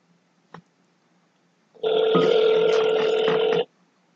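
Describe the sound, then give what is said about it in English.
A single ringback tone from an outgoing phone call, a steady electronic ring of just under two seconds, heard clearly on its own after a faint click. “We are calling the individual now.”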